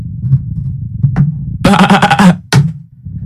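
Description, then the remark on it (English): A person imitates a sheep with a wavering, nasal bleat lasting under a second, then a short clipped second bleat, both loud, over a low rumbling background hum. “I can only speak American sheep.”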